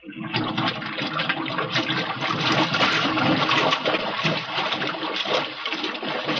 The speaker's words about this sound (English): Water's being pumped out.